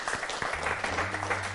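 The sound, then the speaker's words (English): An audience claps for the Lord in steady, dense applause, with a low sustained musical tone humming beneath it. “Clap for the Lord.”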